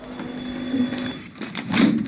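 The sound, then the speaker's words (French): In a scene from the film X14, a doorbell rings at the door of an apartment in the evening, a steady electric tone with bright overtones that holds for about a second, then sounds again, louder and buzzier. No one speaks. “Pour comprendre le côté à la fois décalé et punk de ce film X14, je vous propose d'écouter un extrait dans lequel Liz, l'héroïne, est seule dans son appartement le soir et que quelqu'un sonne à sa porte.”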